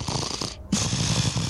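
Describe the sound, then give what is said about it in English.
Heavy, rasping breathing with a deep guttural growl rumbling underneath, fairly loud, continuing steadily apart from a brief pause midway. “In fact, you hear very heavy breathing and what sounds like a deep guttural growl.”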